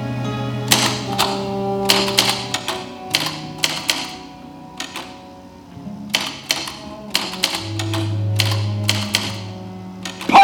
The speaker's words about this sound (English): Start typing that. Sometimes a simple rhythm of typing gets us from page one to page two. And when you begin to feel your own words, start typing them.